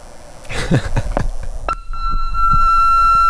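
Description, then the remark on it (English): After a moment of soft clatter and rustling, an answering machine's steady beep tone, played from its cassette, starts and holds at one mid-high pitch until the end, clear and fairly loud. “Even just that tone. I missed that.”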